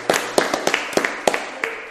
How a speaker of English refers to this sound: Let's clap. Let's clap it out.